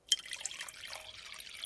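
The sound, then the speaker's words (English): Water pours steadily into a coffee maker, a continuous splashing trickle that starts abruptly and runs for under two seconds, fairly quiet, with no voices. “I poured the water into the coffee maker, threw a spoonful of coffee grounds in, and turned it on.”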